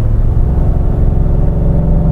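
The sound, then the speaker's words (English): A gasoline pickup truck's engine drones loudly and steadily at about 3,000 to 3,300 RPM, straining under load as it accelerates uphill and downshifts, with a deep, continuous low rumble and no speech. “I mean, you can hear this thing working for it. It's certainly using fuel to get us up to speed.”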